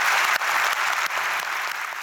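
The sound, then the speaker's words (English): A large audience at the 2019 Auckland Writers Festival claps steadily for the panellists at the end of a session, a dense, sustained wash of many overlapping hand claps at a fairly loud, even level with no voices over it. “Can we have a huge round of applause, please?”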